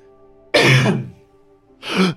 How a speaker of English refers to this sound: Okay. I'm going to cough.